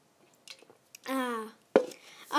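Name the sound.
drinking water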